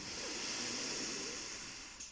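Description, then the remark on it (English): A single deep belly breath drawn in through the nose, a steady airy hiss lasting about two seconds before it tapers off. It is fairly quiet, and no one speaks. “Deep belly breath in through the nose and let go.”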